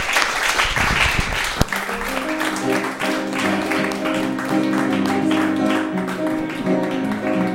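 An audience claps steadily in a dense, loud wash of applause for a man being introduced on stage. After a sharp click, sustained piano notes from a pianist playing for the audience start ringing beneath it and carry on under the clapping.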